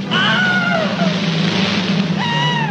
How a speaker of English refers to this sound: The Wilhelm Scream is a sound effect that was recorded in 1951 for a film called Distant Drums. It was a Gary Cooper movie.